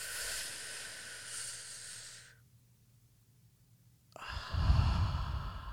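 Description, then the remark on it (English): A slow, deep cleansing breath drawn in with an airy hiss, a brief held pause, then a long, forceful exhale with a rough, sighing rush, with no talking. “just take a deep cleansing breath right now.”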